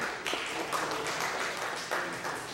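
An audience applauds steadily, a dense crackle of many hands clapping at once, holding at a fairly even level for a couple of seconds with no voices standing out.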